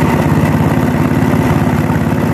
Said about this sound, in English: Can JB Weld fix it? So we're going to give it a shot and see if she starts up. Oh, it was a generator. Gas generator. Look at that.